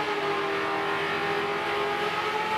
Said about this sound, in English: Can you get speed wobbles in a fucking Hayabusa smart car? That time he didn't wheelie and he took off.